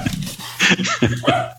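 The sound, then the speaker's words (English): A dog barks several times in quick succession, sharp yips with whiny overtones, moderately loud against a low steady hum, with no talking in the stretch. “I can hear a dog barking in the background.”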